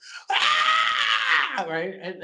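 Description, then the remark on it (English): A loud Wilhelm scream stock effect, used where a TV show depicts hell: one sharp, high-pitched cry held for about a second before dropping into a lower, shorter vocal groan. “I love how every time they show hell, it's a Wilhelm scream.”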